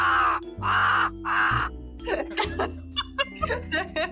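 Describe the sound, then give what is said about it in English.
Three loud, harsh caws from a pack of ravens that are fed birdseed ring out in a steady rhythm, then give way to chattering voices and a bit of laughter. “From a pack of ravens that he gives birdseed to.”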